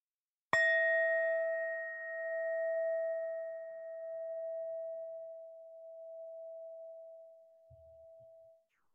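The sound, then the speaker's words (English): A meditation bell is struck once to begin a meditation practice, giving a clear bright ring whose shimmering tone sustains and slowly fades over several seconds amid quiet. “I'll ring the bell and we'll practice for 10 minutes this way.”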